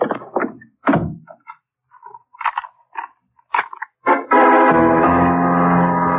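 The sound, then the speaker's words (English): A series of heavy, irregular wooden thuds and knocks as a front door slams and then someone kicks their way out of a closet through heavy wooden paneling, followed by a loud sustained tonal swell. “When I heard the front door slam, I started kicking my way out. The paneling was heavy, and it cost me a torn trouser leg and a scraped shin before I made it.”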